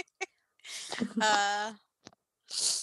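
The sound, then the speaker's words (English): A single loud sneeze: a drawn-out voiced wind-up bursting into a breathy, hissing release, with a short sharp exhale of air trailing after it. “Bless you.”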